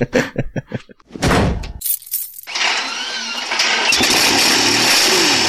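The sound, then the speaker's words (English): A few quick clunks like a car door, then a starter cranks and a car engine catches, settling into a steady roar that swells louder as it revs. Loud, with no talking. “It's door, smile, keen ignition, foot on accelerator.”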